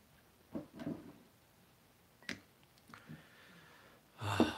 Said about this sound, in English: The cat's over there snoring. I can hear.